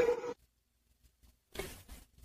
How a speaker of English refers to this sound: I think his dog's going crazy.